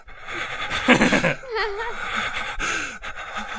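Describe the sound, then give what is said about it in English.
A voice imitates panicked, heavy breathing: a few ragged, gasping breaths with a shaky, wavering whine mixed in, loud and uneven across a few seconds. “And you're like, you're breathing like.”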